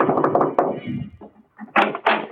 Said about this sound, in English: One night I saw a big house shining in the moonlight. I decided to take a chance. I knocked at the door.